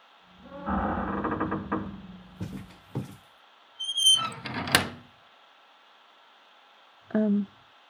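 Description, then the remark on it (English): A door creaks open on squeaky hinges as someone enters, followed by a few clunks and another drawn-out squeal, then a brief final creak after a pause. Fairly loud, with no talking. “Yeah. Door's open.”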